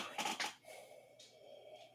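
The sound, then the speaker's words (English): A big yawn: a breathy intake followed by a long, drawn-out voiced sigh with a low wavering tone that fades off, fairly quiet, with no talking. “Oh man, that was a big yawn.”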